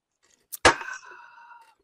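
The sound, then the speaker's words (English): A brand new beer being opened: a quick click, then a sharp, loud crack followed by a bright, ringing fizz that fades over about a second. No one speaks. “Making me open a brand new beer.”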